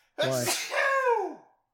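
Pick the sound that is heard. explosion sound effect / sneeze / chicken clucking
sneeze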